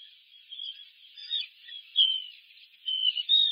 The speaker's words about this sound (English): And I can see the puffin burrow live now. So I'm going to click on that. I'm hearing chirping.